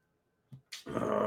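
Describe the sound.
A person lets out a loud, rasping growl. It starts after a soft thump and a quick breathy burst, then holds steady to the end.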